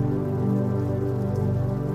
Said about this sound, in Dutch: En terwijl je hier comfortabel in je bed ligt, word jij je bewust van het geluid van regen, tikkend tegen je raam.